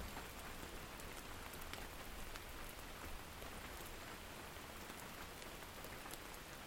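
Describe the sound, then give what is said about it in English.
Steady rain falls on a cabin, a dense, even hiss broken by scattered sharper drips and taps. It stays at a constant level throughout, with no voices. “can you hear the sound of catastrophe in the rain and thunder?”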